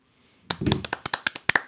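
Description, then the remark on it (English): A short burst of applause for the Beavs: after a moment of quiet, about a dozen sharp, crisp hand claps ring out in a quick, slightly uneven rhythm, as if from one or a few people, with no talking. “can we get an applause for the Beavs?”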